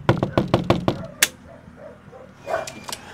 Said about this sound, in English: Okay, so we're going to start our story here on Walker Avenue. This house is a special house that I'm about to knock the door on, and we're going to find out why in just a second. Here we go.